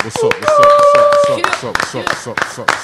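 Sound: round of applause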